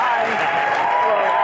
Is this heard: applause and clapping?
yes